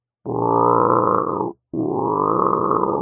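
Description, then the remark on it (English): A voice imitates a hungry wolf's growling stomach with two loud, drawn-out low rumbling growls, the first about a second and a half long, then a brief pause before the second. “The wolf's stomach growled.”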